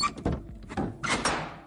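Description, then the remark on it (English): A heavy church door thuds shut, followed by the rattling clank of locks sliding into place on the church's heavy doors around ten past midnight, fairly loud, with a brief metallic ring trailing off. “Stephen approximated it was around 10 minutes past midnight as the locks clanked shut on the church's heavy doors.”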